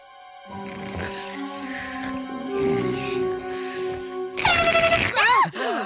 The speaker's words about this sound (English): So later that evening, Homer sneaks into the family's tent and uses his belly to mute an air horn.